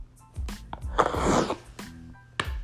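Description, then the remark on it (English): A rough sniff drawn hard through a stuffed-up nose, lasting about half a second, with a few small clicks and breathy noises around it and no talking. “Sorry for sniffing like that. That sounds really disgusting.”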